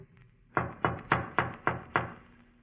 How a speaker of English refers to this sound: I better knock again.